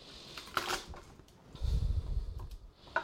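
Garlic cloves are pressed flat with the flat of a metal knife to crack their papery skin: a brief papery crackle, then a dull, heavy squishing crunch, ending with a sharp click, with no talking.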